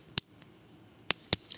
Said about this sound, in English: I'm going to click a pen gear pen close to the microphone and compare it to another pen that came from an orthodontist's office. So here we go. Ready? First one. This is the pen gear pen. It's blue.